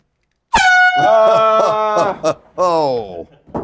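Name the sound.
air horn sound effect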